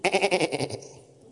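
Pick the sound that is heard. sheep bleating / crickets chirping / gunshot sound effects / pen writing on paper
sheep bleating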